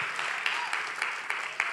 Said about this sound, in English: We'll bring you back. Clap for the keyboard player. You did such a tremendous. The whole worship team.